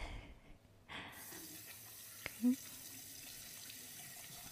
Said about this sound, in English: Okay, so then it's time to cleanse our tool. I will then nicely wash my face, sometimes with just water, but mostly with the gel too.